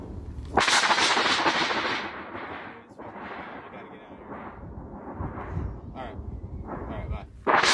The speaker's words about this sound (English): It's starting to rain and thundering hard. Shit, that was lightning. Yeah, it's not good.